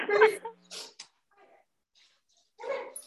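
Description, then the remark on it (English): A dog makes a few short vocal noises, two quick bursts followed by a pause and then a longer one, with quiet gaps in between. “My dog says the same. My dog agrees.”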